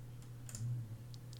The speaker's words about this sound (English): Sorry for the keyboard clattering in the background, but... The clickety-clacks of the pro gamer.